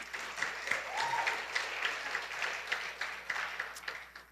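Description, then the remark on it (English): A church audience claps for the people serving in its children's ministry, a steady dense wash of overlapping handclaps at moderate loudness for several seconds with no voices over it. “We can clap for that.”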